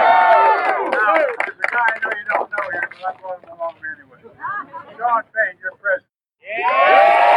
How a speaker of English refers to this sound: Wow. These people are cheering their demise, Shady Grove. I don't even want to listen to them. They have no idea.